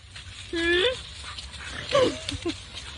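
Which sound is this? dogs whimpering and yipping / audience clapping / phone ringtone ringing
dogs whimpering and yipping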